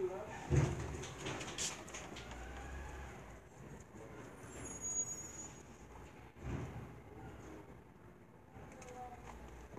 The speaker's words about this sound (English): It's just a truck. That's the green one. That's the green one truck.